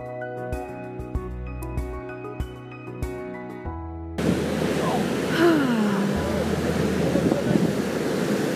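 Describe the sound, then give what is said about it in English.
A few seconds of tinkling music cut abruptly to a steady, loud rush of ocean waves washing in, with a faint murmuring voice briefly rising under the surf. “Right, have you got any anxieties you want to speak out over the waves?”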